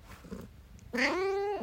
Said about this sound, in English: My cat is hungry for breakfast, but she's got a few more minutes. Say hi, girl.